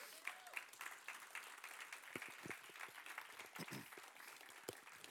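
An audience applauds in the morning as two new youth ministry leaders are invited up on stage: a steady, dense patter of many hands clapping at once, moderately loud and sustained for several seconds, with a few sharper individual claps standing out.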